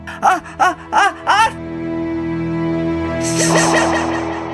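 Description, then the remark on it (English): A narrator's voice imitates a tremendous sneeze: four sharp, rising gasping 'ah' sounds build up, then a long, loud, hissing 'choo' bursts out over a steady low musical drone. “And just as the kitchidi pot was quite full of golden ripe pears, out she came with the most tremendous sneeze you've ever heard.”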